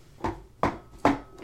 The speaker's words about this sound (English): Knock wood. Touch wood. Touch wood.